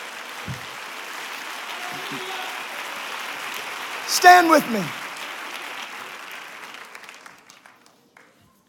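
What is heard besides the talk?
audience clapping hands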